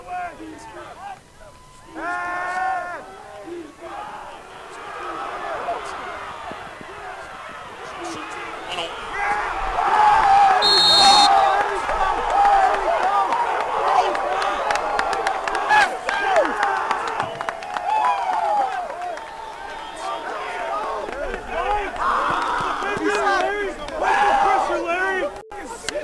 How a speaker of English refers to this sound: Those are the sounds of Dubuque's Malachi Ward sacking Wartburg quarterback Logan Schrader in the third quarter.